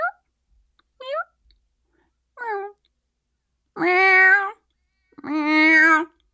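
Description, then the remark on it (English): A human voice imitates cat meows: three short, high kitten-like mews, then two long, loud, lower-pitched adult-cat meows, clear with pauses between. “Except I would like to hear some of your cat meows. Meow. Meow. Go kitten to teenager to adult cat.”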